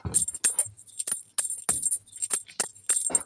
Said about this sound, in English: I don't think you get it with the bells, though. You'd have to sing it. Let me try it with a bell.